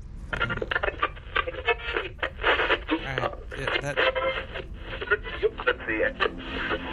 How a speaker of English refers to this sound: There we go. Looks like I'm getting the station in.